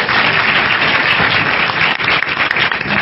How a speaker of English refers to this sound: So would you come to the mic, tell us your name, and ask your question. Give him a round of applause for being brave.